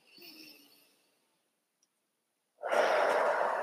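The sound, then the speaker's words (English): A slow, audible breath in, a brief pause of silence, then a longer, louder airy exhale, heard alone with no talking. “And we can do that when we start to pay attention to how things are sounding around us, the breath that we're taking, so we can literally breathe in and out.”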